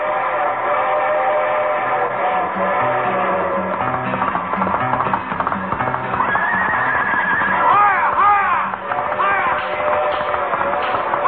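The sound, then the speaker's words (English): The westbound limited train for California rumbles past on the left with a steady, loud clatter, and partway through, several rising and falling horse whinnies ring out over the rail noise as a comic touch. “The train which is about to pass us on the left is the westbound limited for California. The Pony Express.”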